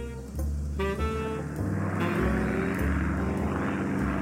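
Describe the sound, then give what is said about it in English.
A propeller airplane drones loudly overhead, its engine a steady buzzing roar whose pitch shifts slightly as it passes, with no voices present. “We'd never seen an airplane before.”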